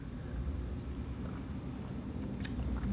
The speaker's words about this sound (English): Oh, did you just take a sip? Oh, cheers.